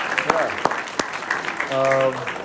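A crowd applauds with a steady patter of clapping for a couple of seconds, and a sustained cheer or whoop rises over the clapping near the end.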